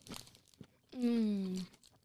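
A couple of short, dry crunches from biting into a whole crunchy candy square, followed by a sustained hummed 'mmm' from the person eating.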